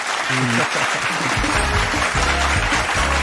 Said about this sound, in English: I'm going to give you a smattering of applause for your single point. And a heavy applause for me.